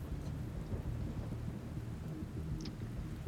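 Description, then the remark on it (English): A steady roar of heavy rain with a deep, continuous rumble of thunder underneath, dense and unbroken throughout, with no voices. “And this is as they're being coated in blood from this rain.”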